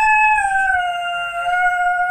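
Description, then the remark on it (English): Maxine, a dog, imitates the siren of a passing fire truck or ambulance with a long, loud, unbroken howl, a steady siren-like wail that sags slightly in pitch as it holds, with no one talking. “This is Maxine doing her siren impersonation.”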